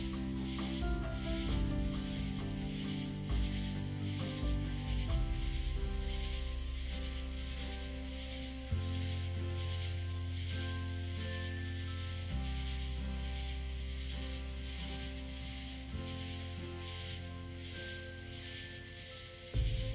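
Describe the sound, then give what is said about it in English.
Tree frogs chirp in a steady, rhythmic high-pitched chorus over a continuous hiss-like texture, layered above soft sustained musical drones that shift chords slowly. No one speaks. “Chirping of the tree frogs and nature taking you away to a healing place you want to be.”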